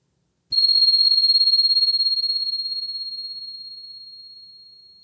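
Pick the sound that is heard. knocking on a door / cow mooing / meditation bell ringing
meditation bell ringing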